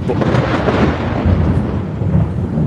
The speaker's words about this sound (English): Holy shit! Guys, lightning literally just struck my house.